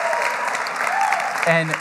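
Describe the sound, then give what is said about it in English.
An audience breaks into steady applause for news of an upcoming wedding, a dense, continuous patter of many hands clapping, with a few voices faintly audible underneath. “And he feels like, yeah, you can clap for that.”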